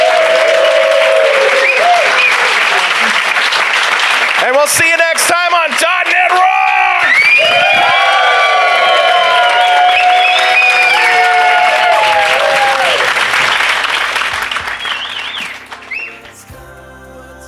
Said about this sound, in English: So we'd like to have you all give Rocky Lhotka one more great big round of applause.